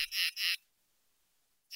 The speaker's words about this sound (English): For many of us, the staccato notes of a katydid might conjure up memories of a warm summer night. But for Ben Mirren, a katydid's chirp is music.